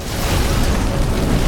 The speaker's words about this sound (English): Oh, we take off with so much jet engine power that it burns them all up.